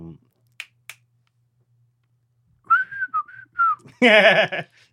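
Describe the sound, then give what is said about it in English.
Two quick finger snaps, then a short whistled melody of several gliding notes, an attempt at the Andy Griffith theme tune, cut off by a burst of loud, animated voices. “That wasn't even the whistle. It was close enough.”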